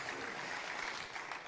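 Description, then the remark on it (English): An audience cheers and claps to send the fifth and sixth grade out in style, in a steady, dense wash of applause that holds throughout, moderately quiet, with no distinct voices standing out. “Before we do, can we cheer and clap and send our fifth and sixth grade out in style and welcome everybody joining online?”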